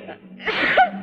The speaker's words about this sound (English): Thank you. Gesundheit.